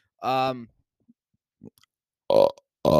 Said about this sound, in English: Dude, there should be like a burp counter. I think that's my third one, I guess.